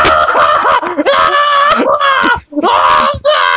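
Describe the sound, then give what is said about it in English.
A man screams at a guitar, a long, loud, strained scream with a ragged, moaning quality, like a headcrab zombie howl, with brief breaks for breath between bursts. “Then I'll pick it up, hold the neck of it with both ends, look at it upside down, and then just scream at it for an hour.”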